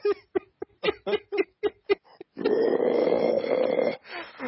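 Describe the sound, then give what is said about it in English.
A series of quick, rhythmic chuckling bursts gives way to a loud, sustained guttural growl, a voice imitating a death metal vocal while introducing the Magic card Herald of Torment, a demon, lasting over a second before trailing into a short rasp. “Dear Magic, print more playable demons so I could Death Metal growl.”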